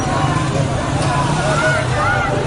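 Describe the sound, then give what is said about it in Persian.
A group of riot police motorcycles comes down the street and roars past people standing on the sidewalk, their engines producing a steady, loud, low rumble that holds throughout, with a murmur of crowd voices mixed underneath. “یک گروه از موتوری‌های ضد شورش از بالا می‌آیند و با سر و صدای زیاد از کنار مردمی که در پیاده رو ایستاده‌اند حرکت می‌کنند.”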